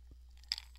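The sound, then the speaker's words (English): A short slurp of iced coffee, a quick wet sip with a faint crunchy rattle like ice shifting, set against quiet background hum with no talking. “Excuse me, had to take a sip of my iced coffee, baby.”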